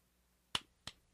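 Two soft, light handclaps about a third of a second apart, close by and crisp, in an otherwise quiet moment with no talking.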